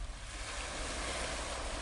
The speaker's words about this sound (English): As I listen once more to the sound of the waves, wash over me, I pray.